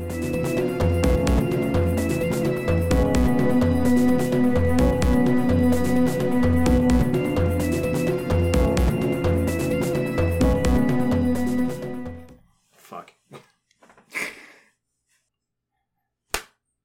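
Dense music plays for about twelve seconds and cuts off, leaving a few soft rustles, then a single sharp hand clap lands alone near the end.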